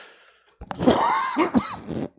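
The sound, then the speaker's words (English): A stifled, held-back cough: a few muffled throaty bursts with a voiced, groaning tone in between, moderately loud and with no talking. “I'm trying to hold back a cough.”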